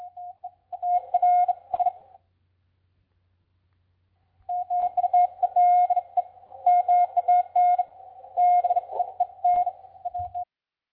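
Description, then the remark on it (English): A steady, mid-pitched Morse code tone keys on and off in the uneven Lake Erie swing style, with extra-long dashes and slight gaps between dashes and dots, sounding in two bursts separated by a few seconds of silence. “I can play you an audio clip so that you can hear what the Lake Erie swing sounded like.”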